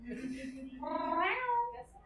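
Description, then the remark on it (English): A person does a drawn-out meow imitation, the voice rising into a strained, wavering cat-like wail before trailing off, moderately loud, heard alone. “And apparently the druid became a cat.”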